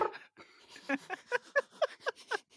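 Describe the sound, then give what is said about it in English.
A person voicing the cat Rebel makes a quick run of about eight short, high mewing calls, fairly soft, with no other talking. “Voicing cats.”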